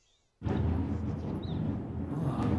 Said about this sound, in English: It's a thunderstorm at my place. Wow. I can't keep it any quieter. That was amazing, the timing of it.